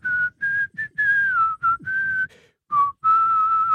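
A person whistles a slow rock melody, clear and steady, in a series of sustained notes separated by short breaths, with the pitch gently stepping and gliding between phrases.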